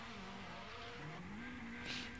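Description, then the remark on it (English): A rally car's engine drones steadily with rising and falling revs, and a brief hiss of tire squeal near the end, as the car spins tight donuts. “I mean, look at how tight those little donuts are inside.”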